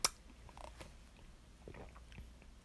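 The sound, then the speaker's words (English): A sip of a very dark beer: a sharp click at the start, then quiet wet mouth and swallowing noises for a couple of seconds, with no one talking. “All right, first sip, going down the hatch.”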